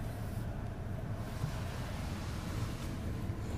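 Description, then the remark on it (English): A steady, dense rush of spraying water and machinery noise, loud and continuous with no pauses, from an automatic car wash washing a car on a rainy day. “It's raining. And I'm getting a car wash right now.”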